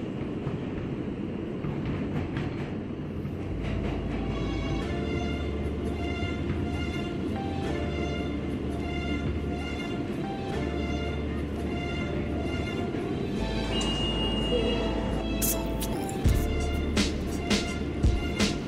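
Subway train ambience: a loud, steady rumble with whining motor tones and recurring low thrumming pulses, then a few sharp clanks and rattles near the end.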